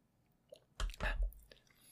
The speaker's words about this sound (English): Excuse me. Let me take a sip.